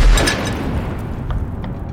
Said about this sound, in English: And this huge explosion happened just down the street. I've heard explosions before in Kabul over the years, but this was by far the largest. This was the closest I'd ever kind of been to one. And the windows kind of rattled